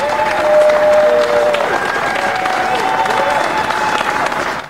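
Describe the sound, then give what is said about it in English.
Workers at a Michigan distribution factory cheer and applaud steadily as boxes of frozen Pfizer COVID vaccine are loaded onto trucks, dense clapping mixed with whoops and shouts, loud and sustained for several seconds before it cuts off. “Workers at the Michigan distribution factory stopped to cheer as boxes of the frozen vaccine were loaded onto the trucks.”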